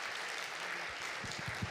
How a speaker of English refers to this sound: Just pretend for 1 minute you're a black congregation, all right? And clap again.